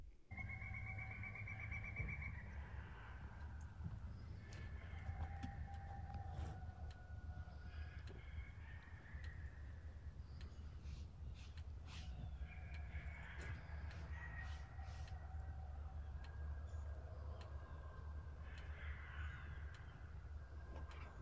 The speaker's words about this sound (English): So you hear a lot of birds in the background, but you hear that howling deep in the woods. And I'm telling you right now, if I'm in the woods and hearing that, I am doing a 180 and getting the heck out of there.